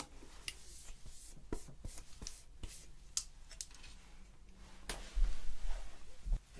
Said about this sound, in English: We lose hundreds of hairs every day of our scalp, especially with excess brushing like this, but this is all for the health of your scalp, because we don't want lice to be there long term.